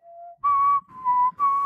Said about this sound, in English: Whistling into a microphone, not the best.